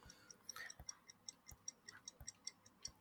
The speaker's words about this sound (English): Can hear the ticking.